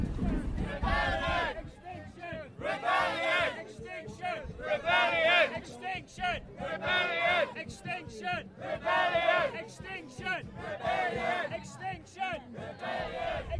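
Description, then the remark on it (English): A crowd of about 300 marchers coming from the north side of a river shouts and chants in loud, overlapping waves, with drumming from a band thumping beneath the continuous roar of voices. “As you can probably hear in the background, there are about 300 people coming from the north side of the river with a drumming band, so I'm going to check out what's going on.”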